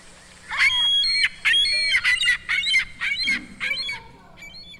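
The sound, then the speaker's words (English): A seagull calls out in a rapid run of six or seven loud, harsh squawking cries, repeated in a steady rhythm, with a faint low hum underneath. “That's a gull. That's a seagull.”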